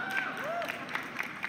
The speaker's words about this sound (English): Or not. Not too many people are clapping about this polka thing.